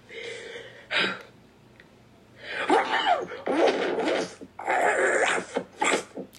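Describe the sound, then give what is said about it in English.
A person who is sick imitates a dog in a barking competition voice, letting out a short bark and then several loud, raspy, growling barks in quick bursts, with no other talking. “I am currently sick right now, but this is my barking competition voice.”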